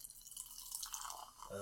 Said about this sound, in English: Dr. Pepper, strawberries and cream, we poured it out.